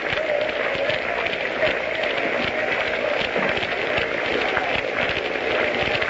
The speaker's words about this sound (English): The crowd is beginning a sort of a half-hearted hand clapping.